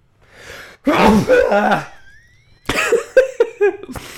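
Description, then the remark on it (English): A faint breathy intake, then a loud voiced sneeze burst, triggered by looking at a bright light, followed after a short pause by a second harsher, sputtering sneeze with a strained vocal edge. “I really have to sneeze.”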